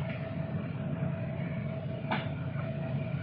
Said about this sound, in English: The air conditioner is on. Oh, is that the air conditioner? Oh, wait a minute. No, I'm not saying to turn that off.